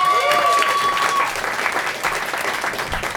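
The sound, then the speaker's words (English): A crowd applauds to welcome a comedian, a dense wash of clapping that holds loud for the whole stretch, with a few faint whistles and cheers mixed in at the start before it evens out. “Give a warm welcome for the very, very hilarious”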